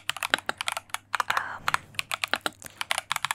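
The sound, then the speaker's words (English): Fast ASMR typing on a computer keyboard, a dense stream of crisp clicks and clacks in an uneven rhythm, with a brief soft breathy mouth sound partway through. “ASMR keyboard typing (with whispers) for sleep, relaxation and studying”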